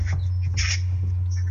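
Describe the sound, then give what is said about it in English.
Birds call around a home in the Blue Mountains, with short chirps and one harsher squawk rising over a steady low hum. No one speaks. “Yeah, I can hear birds in the background.”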